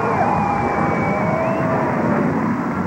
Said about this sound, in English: Now Air Force Number One taxiing in. Doors of the Big Bird swing open.